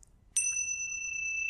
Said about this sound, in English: it's a meditation, I'll begin and end it with a bell. For a lot of very good practical reasons. And then every so often, because the modern mind is a wandery mind, every so often I'll sound the bell.